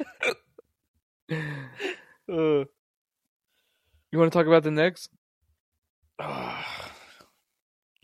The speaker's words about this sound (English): I got the burps, but I'm down to talk about the Knicks.